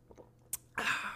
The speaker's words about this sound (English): I want to take a sip of coffee.